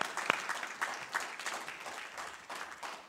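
An audience claps hands for the Lord in a steady, dense burst of applause, with a few sharper individual claps standing out near the start. The clapping stays fairly even in loudness throughout.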